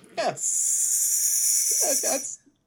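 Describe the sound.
A person makes a long, steady snake-like hiss at another person, lasting about two seconds, with brief vocal sounds at the start and end.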